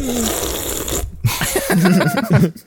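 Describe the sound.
A man imitates slurping and licking with wet, sputtering mouth noises: one burst, a brief gap, then a loud run of squelchy, gurgling slurps before it cuts off.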